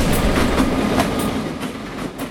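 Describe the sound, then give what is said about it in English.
A freight train rumbles past on tracks about 100 feet behind a house next to Spinrail Dune Buggy in North Bend, Oregon, its steady low roar punctuated by regular clickety-clack wheel beats over the rails, loud and continuous throughout. “Our house is right here next to our business, and the train tracks run probably 100 feet, maybe, behind our house. So we hear the train.”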